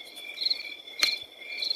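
Crickets chirp steadily in a continuous high-pitched trill, with a brief sharper click near the middle, no voices present, giving the sense of a quiet night outdoors.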